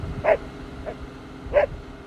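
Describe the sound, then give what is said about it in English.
A dog gives two sharp barks about a second apart, with a softer yip between them, over a steady low rumble of background noise. “It's a sunny day. Wind blowing, cars rolling, dogs barking and howling.”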